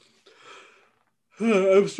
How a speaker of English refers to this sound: Jeez. No, I'm sorry. I'm yawning all day today.